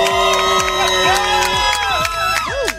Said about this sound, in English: Can I have a massive cheer from everybody here, because we are live at Amanzi Mtoti High School.